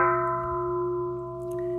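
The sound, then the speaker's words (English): A single meditation bell rings out, its clear, steady tone sustaining and slowly fading as the brighter overtones die away, heard alone with no talking. “To hear the sound of the bell.”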